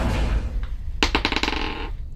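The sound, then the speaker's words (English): A metal cage door slams with a sharp clang, then rattles and jangles in a quick series of metallic taps that die away within about a second, over a low steady rumble. “And he's going to do an intimidation check on you as he slams the cage.”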